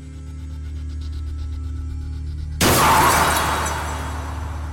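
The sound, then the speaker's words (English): A steady low engine-like rumble runs for a few seconds, then a car crashes into a tree with a sudden loud crash and spray of shattering glass that rings out and slowly fades. “A car brushes by you and crashes into a tree.”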